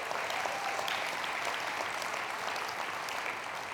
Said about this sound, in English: Come on, worship the Lord. Give him a hand clap.